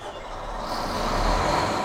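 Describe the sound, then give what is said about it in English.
A diesel generator engine supplying electricity to the village of Old Crow in Canada's Yukon Territory runs steadily, a continuous low rumble with a broad mechanical hiss layered on top, holding an even, moderately loud level throughout with no voices. “One diesel generator or another has been providing electricity to Old Crow in the Yukon Territory for half a century.”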